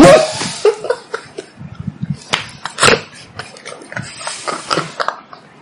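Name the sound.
person imitating pig oinking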